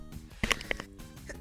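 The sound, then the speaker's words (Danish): A sudden sneeze bursts out sharply, with a few softer breathy sounds around it and a short noisy rustle at the very end. “Og på det skidt nys.”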